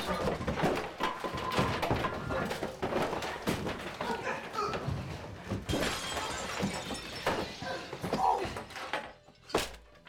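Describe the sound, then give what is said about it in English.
A mirror in a bar shatters in a loud, bright crash of breaking glass amid a scuffle of heavy thunks and knocks as a bouncer is knocked out, with tinkling debris and one last sharp hit near the end. “Son of a bitch, you knocked out my bouncer and broke our damn mirror.”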